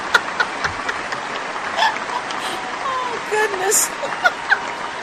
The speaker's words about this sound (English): I don't think I've ever heard a crowd clap like that for me. A big crowd like that. Oh my gosh, that's amazing.